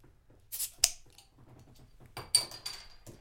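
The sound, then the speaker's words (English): Two cans of a 5.75% San Diego pale ale snap open one after the other, each a sharp metallic crack followed by a brief fizzing hiss, with faint handling clicks between them and no talking. “Just kind of light for a pale ale, but let's crack these open and see if they taste kind of light.”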